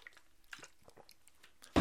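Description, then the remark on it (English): Wet chewing and crunching of a mouthful of cereal, with irregular soft crackles and squishes, ending in one louder, sharper crunch. No one speaks. “Give me some of that sweetness. Pour it down your gullets.”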